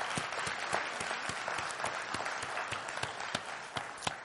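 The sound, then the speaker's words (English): A church audience applauds first-time guests at a Sunday morning service, many hands clapping in a dense, continuous patter with a few sharper individual claps standing out, holding at an even level throughout with no talking. “Let's have a round of applause for all of our first-time guests here this morning.”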